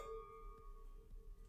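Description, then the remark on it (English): Wine glasses clink together in a toast, leaving a clear bell-like ring that hangs and slowly fades, fairly quiet with no talking. “It's a great sound.”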